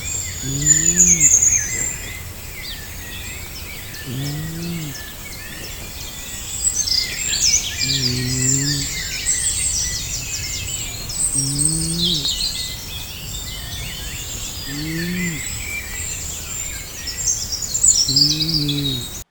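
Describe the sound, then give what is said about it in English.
A dense chorus of morning birdsong at a campsite, many chirps and trills layered together, continues throughout, with low, rhythmic breathy snoring from a tent repeating every few seconds beneath it. “Yeah, because he's got the bird song.”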